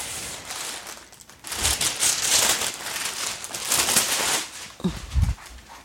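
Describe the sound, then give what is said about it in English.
Parchment paper from Costco is pulled off a roll and torn along its metal cutter to line a baking sheet, with loud crinkling and rustling in several sustained bursts, ending in a couple of sharper handling sounds. “And I'm going to be loud again because I need to put some parchment paper on it.”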